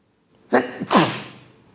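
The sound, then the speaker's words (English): A sneeze: a sharp intake burst followed by a louder, breathy explosive release, with a short trailing decay and no talking. “Bless you”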